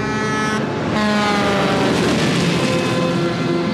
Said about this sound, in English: Having a little engine trouble.